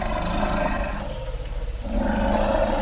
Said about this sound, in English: performing what we call a greeting ceremony. Again, Peter Regg, and he says these rumbles, these are a perfect example of elephant language